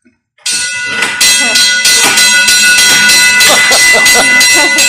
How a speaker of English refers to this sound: It's got a little hand lever that you can put in there, and it runs the bell up front. Right. And you got to keep pushing it in order to get that bell to move.